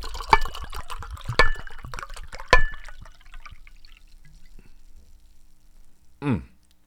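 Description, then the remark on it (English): A drink is poured as a libation: three sharp glassy clinks, then a soft, steady trickle of liquid, ending in a brief gurgling splash. No one speaks. “Well, let's go ahead and do our check-ins, our libations, but first things first.”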